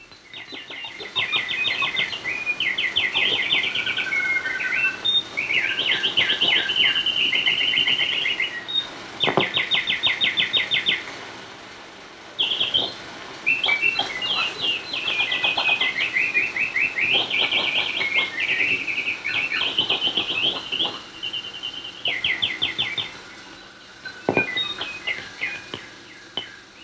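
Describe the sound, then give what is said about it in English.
Heavily electronically processed birdsong from Marie Mencken's 1957 film Glimpse of the Garden: busy, chattering, sped-up rapid repeated trills and chirps stacked densely and continuously, sounding loud, with a couple of brief pauses. “And if those birds sounded like they were hyped up, it's because they were electronic. Yeah, they're heavily processed, and that's from 1957.”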